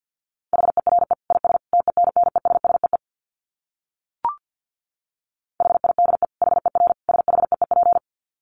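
Rapid Morse code practice for a dit challenge at about 50 words per minute: a steady, mid-pitched beep keyed in quick dits, in two bursts separated by a short pause with a faint click, and no talking.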